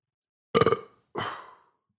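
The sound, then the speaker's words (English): Two burps in quick succession, the first a short, rumbling, voiced belch and the second a breathier, longer release, both loud with silence around them. “Hold on, sorry, I'm going to burp.”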